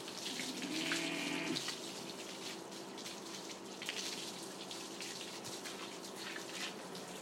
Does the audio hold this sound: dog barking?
no